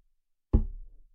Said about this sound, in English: He stood outside of the door, took a deep breath, and knocked twice.